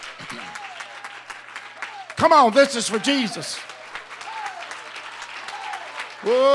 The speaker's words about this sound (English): Give the Lord another real good hand clap of praise.